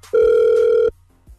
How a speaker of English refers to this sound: So we're going to call her right now, hope that she picks up the phone, and smooth the situation over, all right? Stay quiet, because we're going to call her.